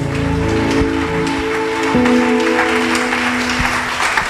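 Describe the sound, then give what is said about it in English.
An audience claps steadily, a dense continuous patter of many hands at a fairly loud, even level, with a faint sustained tone humming beneath it and no talking. “I'm surprised at this kind of clapping.”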